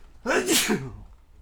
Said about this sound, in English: I'm going to sneeze.